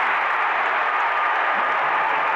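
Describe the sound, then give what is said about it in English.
A basketball arena crowd roars and cheers in a steady, loud wash of noise that holds without letup for a couple of seconds, with no single voice standing out, during a Mavericks–Jazz series game as Powell bounces once, taps both thighs and misses a free throw. “Crowd making noise as Powell bounces once, taps both thighs, and misses the free throw.”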